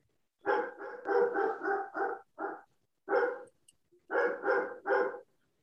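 A dog barks repeatedly in quick, loud bursts, with a short pause midway before another run of sharp barks.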